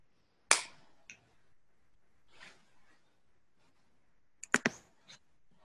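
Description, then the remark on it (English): At the end of a guided meditation, sharp, crisp finger snaps come at irregular intervals: one loud snap, a softer one, then a quick cluster of three or four near the end, with a faint rustle in between and quiet otherwise. “When you feel comfortable, you can open your eyes and snap your fingers.”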